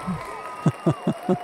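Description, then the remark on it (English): An audience cheers in a steady rhythmic chant, four loud voiced bursts evenly spaced about a fifth of a second apart, after a brief softer vocal sound at the start. “How long did we pay them to cheer for?”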